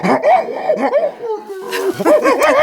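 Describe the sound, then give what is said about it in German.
A tiger roars and snarls, loud and continuous, with several rising and falling growling bursts packed into a few seconds and no pause between them. “Ja, brüll nur. Uns wirst du nicht verspeisen.”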